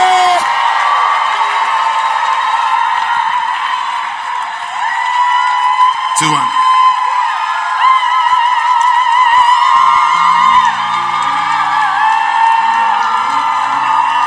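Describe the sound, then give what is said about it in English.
An audience cheers and claps loudly and continuously as a bishop is welcomed to the pulpit, with whoops and shouts rising over a dense wash of applause that holds steady from start to finish. “If you're excited as I am, make some Holy Ghost noise, clap your hands as we welcome to the pulpit,”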